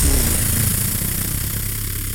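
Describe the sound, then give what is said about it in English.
A voice imitates a shotgun pull-start engine with a loud, gritty, sputtering rumble that holds steady for about two seconds, low and buzzy throughout, with no words. “Just to start it up, it's got like a shotgun pull start.”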